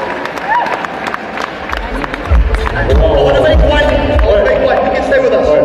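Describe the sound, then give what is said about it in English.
An audience applauds with a dense patter of overlapping claps, mixed with crowd murmur and some cheering voices; the applause holds fairly steady and loud throughout. “One of applause, one of applause for these guys.”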